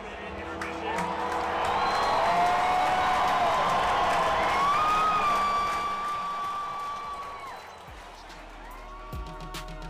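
A large crowd at an Oakland Raiders game in the Coliseum roars continuously, the cheering swelling in the first few seconds, holding loud, then easing off toward the end, with scattered whoops and whistles rising above the din.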